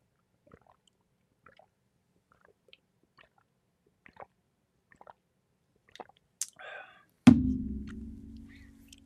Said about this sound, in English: Excuse me, let me take a little sip of water here. Excuse me.